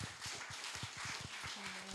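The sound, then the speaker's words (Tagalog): An audience applauds the Lord after a prayer, with steady, dense clapping that stays fairly soft throughout, and a low sustained tone joins in over the last moments. “Ibigay po natin yung totoong palakpak sa Panginoon.”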